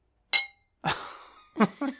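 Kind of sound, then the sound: household object, glasses clinking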